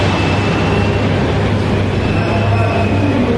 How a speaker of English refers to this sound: Jet fighter flew over, can't see it.